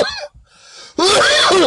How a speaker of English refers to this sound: Pineapple got me coughing.